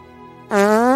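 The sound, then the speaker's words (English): A short, loud, buzzy fart noise bursts in after a low steady hum and holds for about half a second, rising slightly in pitch. “We're from dog mauling to fart jokes.”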